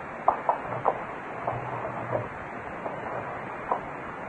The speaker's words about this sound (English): Well, what are you opening and closing those windows for? Not so loud. Huh? I want to find out if either of the windows in this room squeak.